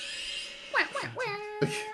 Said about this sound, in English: Grunting, screeching.